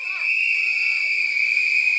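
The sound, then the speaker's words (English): An audience whistles together to vote for the answer 'parents', in a loud, sustained, high-pitched chorus that holds steady for about two seconds, with no talking over it. “Okay, so I want you to party horn for partner, and I want you to whistle for parents.”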